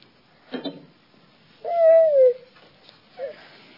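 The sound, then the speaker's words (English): A bird calls once with a smooth, sliding hoot-like note, clear, framed by a couple of short soft bursts of noise and a brief faint chirp afterward. “One beautiful bird.”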